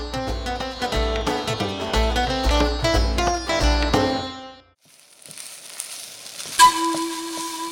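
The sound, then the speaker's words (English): A short stretch of rhythmic melodic music ends, then a steady high-pitched sizzle of food frying as aunties cook with curry leaves, garam masala, cumin and anise takes over, with a brief clatter and a low hum joining near the end. “Listen to the sounds of your aunties cooking.”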